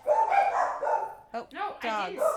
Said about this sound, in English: Dogs.